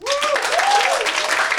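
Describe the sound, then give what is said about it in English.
A crowd at the Comedy Store bursts into loud, steady applause, with a couple of rising whoops and cheers cutting through the clapping near the start. “I'm your host, and by round of applause, who has never seen the show before?”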